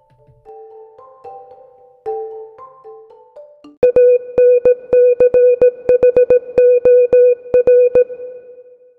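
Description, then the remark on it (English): A short instrumental music interlude: a gentle synth melody of soft sustained notes, then a loud, insistent run of sharp beeping tones pulsing in a Morse-like rhythm. No voices. “I'll see you after the music.”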